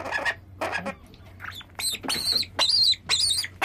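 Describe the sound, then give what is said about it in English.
A young bird chick squawks and cheeps insistently in a rapid run of harsh, rising calls while being fed with a syringe, fairly loud, with a low steady hum underneath. “This bird is particularly vocal, which is good.”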